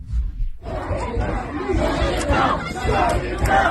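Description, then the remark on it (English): A screaming mob of protesters outside a door at a University of New Mexico event, while people inside, including police, try to keep the doors closed. A continuous, chaotic roar of many overlapping raised voices, with low rumbling and sharper yells, beginning abruptly after a brief quieter moment. “people trying to keep the door closed because this screaming mob outside.”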